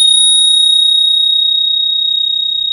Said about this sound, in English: you know, it's pricey and it's a Bell. And you're like, I don't spend a lot of money on a Bell. Come on. Yeah. I mean, those things come free with somebody. Ding it again. Yeah, this thing. This is why you're spending so much money on it.